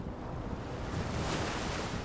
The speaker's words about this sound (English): Several days into the trip, the oceans become rougher and rougher. The sky begins to darken.